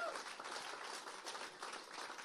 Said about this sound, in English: So when we clap, we don't just clap. When we clap, right? So let's try that again one more time. That's how we do it.